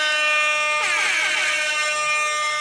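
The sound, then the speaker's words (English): A loud, blaring air horn sounds continuously for a few seconds, its harsh tone wavering and warbling partway through, with no voices. “That's the problem is we didn't have enough air horn.”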